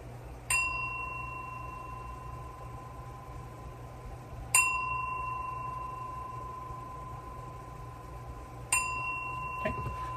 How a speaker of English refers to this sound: And now I'm going to lead a meditation, okay? So I'm going to ring the bell.